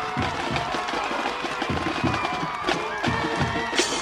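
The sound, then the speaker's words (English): A dense, roaring crowd of Merrimack and Bedford fans at a football stadium cheers steadily, a loud wash of voices with rhythmic low thumps pulsing underneath about twice a second, like stomping or drumming, with a band playing, and no clear speech. “You can hear this place jumping now, Nick. It's rocking.”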